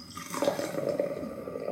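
Wine pours steadily into a glass for under two seconds, a continuous splashing trickle with a faint rising ringing tone as it fills.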